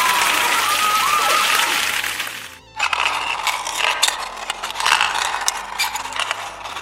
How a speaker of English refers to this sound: Big round of applause for Flick!